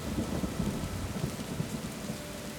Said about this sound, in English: Okay, so as the rain continues to pour, and just for the sake of ambience, you begin to hear thunder.